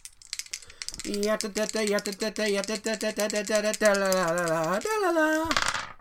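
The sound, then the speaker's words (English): Dice are shaken and rolled to pick the next movie, rattling in quick, clattering bursts for several seconds, fairly loud, while a voice holds a buzzing, wavering drone over them that rises sharply near the end. “Blow them dice.”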